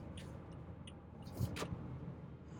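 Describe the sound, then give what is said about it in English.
Steady low road rumble from a box truck rolling past on a road as it cuts off the speaker's vehicle, with a brief louder swell of engine and tire noise midway. No one speaks. “But when are we gonna get, just got cut off by a box truck.”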